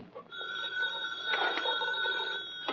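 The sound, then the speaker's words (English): A telephone bell rings with a steady, shrill metallic trill that lasts a few seconds, clear, with no voices over it. “Now the phone.”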